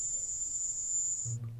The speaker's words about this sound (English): Sounds like crickets to me.